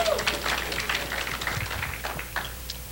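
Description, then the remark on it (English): An audience claps together in a dense burst of applause, steady throughout and fairly loud, with scattered voices mixed into the crowd noise; the clapping is a hand clap of appreciation for the Lord during a sermon. “Somebody give the Lord a hand clap of appreciation.”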